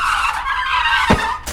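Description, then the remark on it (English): A band's tour van pulls up after driving into a crack in the road, its tires squealing and skidding loudly with a high, wavering screech, then a sudden sharp burst cuts in near the end as a tire pops. “… tour van pulled up and immediately popped its tires, but that was normal these days.”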